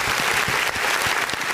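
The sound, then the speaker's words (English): Steady audience applause for the Four Mics crew, a dense wash of many hands clapping at an even, fairly loud level for the whole stretch with no voices over it. “Let's clap it up for the Four Mics crew.”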